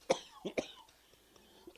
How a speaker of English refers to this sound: …'s just having a coughing fit.